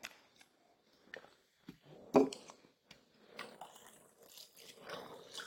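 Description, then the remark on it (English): Liquid pours in a steady, hissing stream after a few sharp clicks and knocks, the splashy rush swelling unevenly toward the end. No one speaks. “That sounded so satisfying, that pouring sound.”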